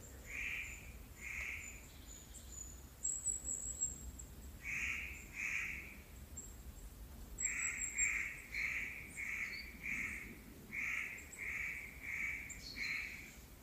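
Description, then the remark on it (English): Harsh, rasping calls of spotted nutcrackers, grizzled brown and white birds of the crow family, repeated in short bursts of two to five notes on a mountain beside Sofia, against a quiet outdoor background with faint higher bird chatter. “It is of the crow family, but it's a very grizzled brown and white bird, which I guess cracks nuts.”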